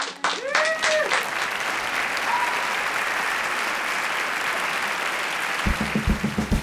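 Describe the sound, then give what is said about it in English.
An audience breaks into sustained applause, a dense wash of many hands clapping at steady loudness, with a few brief voices early on and a low musical pulse entering near the end. “So I would like us to take this moment to clap it up.”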